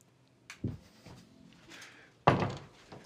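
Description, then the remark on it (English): A door is handled with a soft bump and faint rattling, then swings shut with a single loud thud near the end as someone closes it. No one speaks. “Does your cat like coming inside? Then you should close your doors.”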